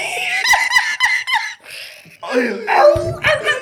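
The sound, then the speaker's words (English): A dog yelps and barks in a quick run of shrill, high-pitched bursts, loud, with people laughing over and around the noise. “I'm not gonna be able to get through this if y'all keep playing the damn dog, bro.”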